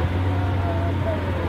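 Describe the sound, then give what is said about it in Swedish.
A Lamborghini sports car driving past: its engine gives off a steady, loud low rumble with a faint humming tone, holding constant throughout the brief moment, with no voices heard. “Oh, shit, det där är ju en riktig jävla värsting Lamborghini.”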